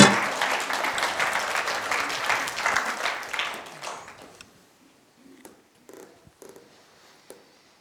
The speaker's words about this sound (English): Oh yeah, you can clap. Yeah, sure.